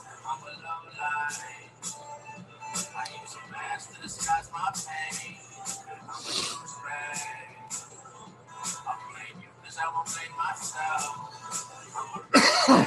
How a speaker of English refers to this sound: Oof. Wow. The only thing I don't like about the dabs is the lingering cough. But I do like the buzz.